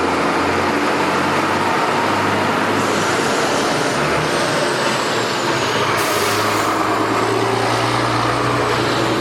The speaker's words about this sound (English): Wow, garbage truck.